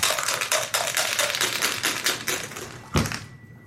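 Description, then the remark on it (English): Dice rattle and clatter in a rapid, dense burst of hard little clicks, ending with one sharper knock as they settle, rolled during a dice game. Fairly loud, with no talking. “Okay, I'm out, so you guys get one more roll round if you save”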